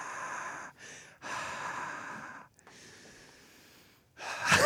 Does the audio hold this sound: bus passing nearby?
no